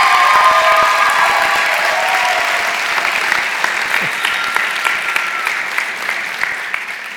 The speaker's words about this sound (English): Would you guys give them a round of applause and thank you?